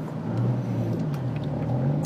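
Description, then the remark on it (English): A car engine idles in stalled traffic with a steady low rumble and faint whir, holding constant throughout. “Yeah, I'm stuck in traffic, and it's just another day in my life.”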